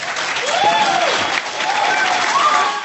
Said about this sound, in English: The crowd is standing and cheering at his actions. Most of the crowd are Iraq, Afghanistan, Persian Gulf War, and Vietnam era veterans.